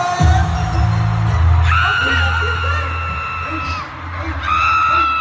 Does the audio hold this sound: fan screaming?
yes